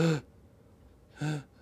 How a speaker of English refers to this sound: So if you invite the air to come up into the upper chest, you can even breathe in through your mouth and maybe it's like a gasp.